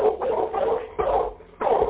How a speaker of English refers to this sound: See, we can hear that dog barking right now.